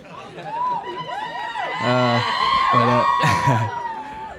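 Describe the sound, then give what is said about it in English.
An audience screams and cheers loudly and continuously, many high-pitched voices overlapping, swelling to a peak midway before easing slightly toward the end. “I know I'm not going to get as many screams as you, bro.”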